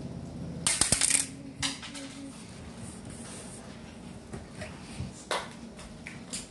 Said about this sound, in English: I don't have mine because I have the really cool dice that I want to roll.